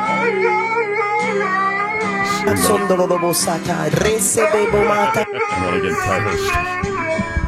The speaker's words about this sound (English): Somebody playing a guitar, the dog singing along.